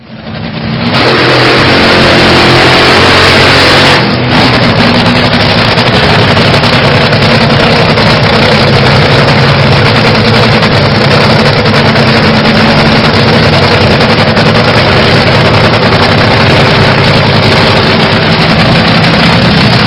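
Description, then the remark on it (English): A drag racer engine of around 7,000 horsepower roars at full power, loud, a dense sustained blast of combustion that starts abruptly and holds steady with a raw, rumbling intensity throughout, no voices. “Let's take a look at what that looks like actually for an engine to be firing on all cylinders.”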